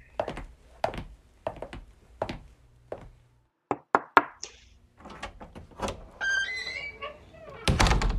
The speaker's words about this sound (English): Go ahead. I'll knock on the door.